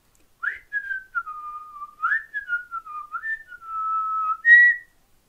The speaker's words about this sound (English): One rosy pink morning, a farmer whistled his way to work. Can you whistle?